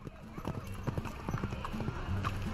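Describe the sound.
Horse hooves clip-clop steadily in a quick, uneven rhythm as a horse-drawn coach rolls along on the commute from outside Paris to the Sorbonne, with low rumbling and indistinct murmuring voices underneath.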